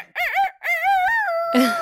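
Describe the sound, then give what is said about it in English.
A chicken lets out loud clucking squawks: two short wavering bursts followed by a longer warbling call that trails off, with no talking over it. “that's Sparky, codename Sparkalicious. She's my giant chicken sidekick”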